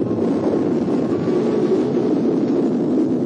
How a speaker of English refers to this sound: Clear to launch. We're counting. Engine start. Ignition.